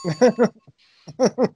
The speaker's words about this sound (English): Is that a real bell that you found? Yes, it is.